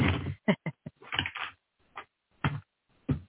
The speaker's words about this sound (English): Doing a little shuffling. Don't want to get all the same cards popping out.